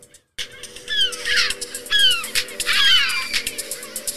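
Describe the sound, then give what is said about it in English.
The seagull-deterrent audio track Bye Gull Bye, made with a gull expert and sound engineers: harsh, descending gull-like cries repeat in three loud bursts about a second apart over a steady background hiss, with no voices. “This is gonna scare them off? It sounds like it's gonna bring them in.”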